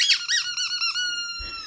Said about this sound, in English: This is when Swaggy goes crazy. Oh, this is fantastic. Squeaky toy versus squeaky toy.